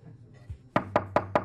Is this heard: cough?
no